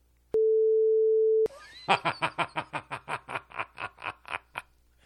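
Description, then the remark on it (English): A loud censor beep, a steady mid-pitched tone held for about a second, cuts off abruptly and is followed by a burst of rapid, rhythmic snickering laughter. “Here's the thing, and I'm going to cut this out. Or at least beep it.”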